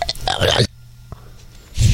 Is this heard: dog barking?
no